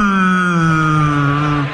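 A single long, low whale moan holds steady and loud for under two seconds, its droning tone sliding slightly downward before fading out at the end.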